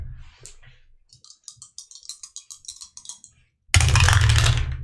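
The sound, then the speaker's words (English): Dice are re-rolled through a dice tower, clattering down in a quick run of sharp plastic clicks and taps, then a loud, dense rattle at the end as they land and tumble. “I have a dice tower, by the way. I'll just keep these two tens. There you go. Oh, yeah. And I'll re-roll them.”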